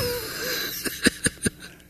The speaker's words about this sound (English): I'm going to breathe.